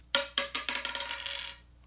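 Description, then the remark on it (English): A single die, rolled in a no-wager game of dice, clatters across a hard surface, a few sharp bounces at first that quicken into a rapid rattling tumble before settling, fairly crisp with no voices. “So let's say I'm going to roll a die here.”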